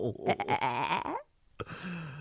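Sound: goat bleating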